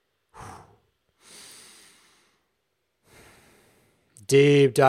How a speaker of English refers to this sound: Deep diaphragmatic breaths in which that you're just breathing deep into your balls, deep into the diaphragm. Let the breath start in the balls. Let the breath start in the diaphragm.